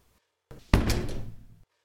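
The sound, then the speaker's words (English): An office door slams shut with one loud, heavy bang, preceded by a brief rattle of movement and followed by a short, booming rumble that quickly fades. No voices are present. “ran back into his office, slamming the door.”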